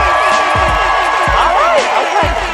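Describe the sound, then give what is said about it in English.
A crowd at a bar cheers and applauds loudly and steadily, voting for the winner of a rap battle, with high whoops and yells rising over the din and a few heavy thumps like stomping feet underneath. “We got a measure, we got to see who wins, so it's based by a round of applause.”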